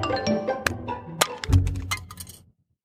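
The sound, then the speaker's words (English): A phone being smashed: several sharp cracks and crunching impacts over a couple of seconds, loud, with a heavier thud midway, then abrupt silence. No one speaks. “Just breaking the phone.”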